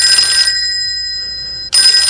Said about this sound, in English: Oh, I'm hearing the phone ring.